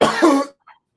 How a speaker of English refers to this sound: I got a cough.